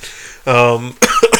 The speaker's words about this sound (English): oh, there he goes. I'm coughing.